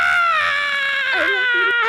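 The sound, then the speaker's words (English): A human voice imitates a creature's drawn-out scream, a loud, strained, wavering wail held for about two seconds, alone with no other sounds. “But now his full transformation is done, as he's just screaming with his bloody face”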